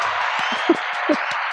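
A small group at Konya Corner applauds a guest, a dense, steady patter of clapping held at an even level throughout, with a few brief low thumps mixed in and no one talking.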